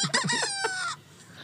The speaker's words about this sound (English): little angry chicken